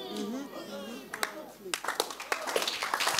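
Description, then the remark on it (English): A voice talks briefly, then an audience starts clapping: a few scattered claps at first that quickly thicken into steady, moderately loud applause from a crowd. “Watch this before you clap.”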